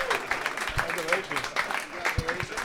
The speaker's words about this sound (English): Ladies and gentlemen, big round of applause.